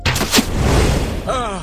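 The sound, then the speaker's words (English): A fire arrow is loosed in a video game: two sharp, punchy bursts give way to a loud, crackling rush of flame, ending in a brief wavering, descending tonal whoosh. “One fire arrow and...”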